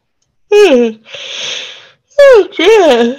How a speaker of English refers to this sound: Oh, yawns are really good. That's a sign of clearing.